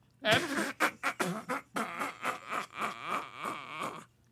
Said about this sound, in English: If you're going to fart, you have to crack that window.